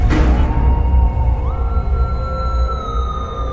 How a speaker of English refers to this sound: We're away from the windows, in the front hallway, listening to them. The howl, high-pitched, nasally, throaty, It's so hard to define.